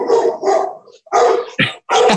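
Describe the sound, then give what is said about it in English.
A male dog barks five times in a loud, uneven series during an interview, the first two barks longer and rougher, the last few sharper and quicker, with no voices over them. “He usually barks in every interview.”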